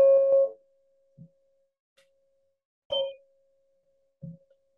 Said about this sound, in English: Stay with the sound of the bell from beginning to end of closed practice.